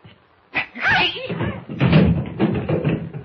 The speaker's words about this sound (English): What happened, Jimmy? I kicked him in the shins.